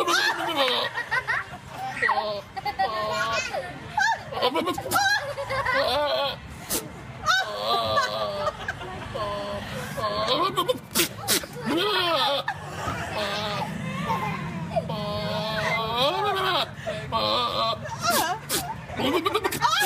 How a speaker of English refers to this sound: This is an audio thing that I just need to play here. It All says, right. quote, goat makes peculiar noises.